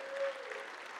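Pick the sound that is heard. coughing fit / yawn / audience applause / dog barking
audience applause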